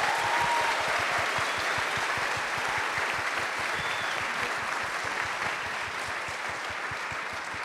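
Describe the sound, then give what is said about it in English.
An audience applauds the panelists of a panel event steadily, many hands clapping in a dense, continuous patter that holds strong throughout and eases only slightly toward the end. No one speaks. “And can we have another round of applause for our panelists?”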